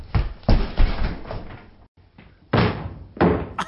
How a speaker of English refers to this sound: That's it. Stand back. I'm breaking down the door.